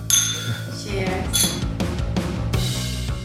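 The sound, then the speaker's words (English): Glasses clink together in a toast, with several bright, ringing chimes spread over a few seconds while voices murmur and chatter. “Oh, thank you so much. Cheers.”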